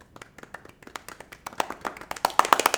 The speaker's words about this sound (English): Give it up. Yay. Don't stop clapping. I wasn't gonna. Don't. Should I clap also? If you want.